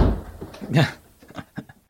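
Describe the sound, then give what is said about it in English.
A male musk duck in Australia mimics a slamming door while trying to impress females: a loud, booming thud with a sharp crack, followed by a few fainter knocking clicks, heard alone without talking. “who was recorded swearing during moments of aggression, and also imitating the sound of a slamming door when trying to impress females.”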